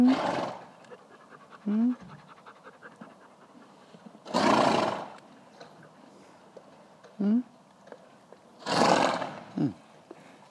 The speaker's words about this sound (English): The horse wants to say hello to you. Go and say hello.